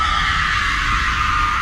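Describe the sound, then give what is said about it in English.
A loud, shrill scream sound effect from a soundboard button blares continuously for under two seconds, harsh and sustained with no pauses and no one talking over it. “You just spam the scream button.”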